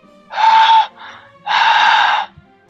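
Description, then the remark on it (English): A person imitates heavy breathing as the answer to a quiz question, with two loud, raspy, drawn-out breaths, a long inhale-like gasp, a brief softer catch, then a second extended heavy breath. “The answer is heavy breathing.”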